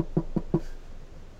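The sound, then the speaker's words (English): Three quick knocks on a wooden surface, evenly spaced, with a dull hollow thud to each, then quiet room tone. “You know, knock on wood.”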